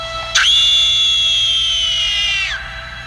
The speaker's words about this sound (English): Sounds like somebody lit off one of those screaming firecrackers.